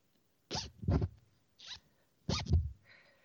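A zipper pulled down in short, jerky bursts, stopping and restarting several times as it gets stuck halfway down, with no one talking.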